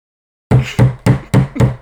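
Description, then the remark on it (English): A hammer strikes a nail five times in a quick, steady rhythm, each blow loud and sharp with a short ringing decay, after a brief moment of silence. No one speaks. “That was me hitting the hammer, damn.”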